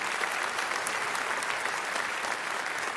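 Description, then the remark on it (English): An audience applauds steadily in appreciation of a team of volunteers, many hands clapping in a dense, even wash of sound that holds at a moderate level for a few seconds with no voices standing out. “Could we give them a hand clap of appreciation this morning?”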